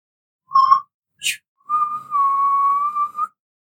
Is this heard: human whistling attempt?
yes